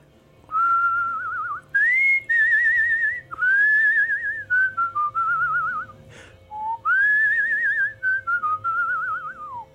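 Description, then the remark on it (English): A person whistles a slow, wavering melody, long held notes gliding up and down in gentle phrases with short breaths between them, no talking over it. “Not to put you on the spot, but could you whistle a little jingle for us?”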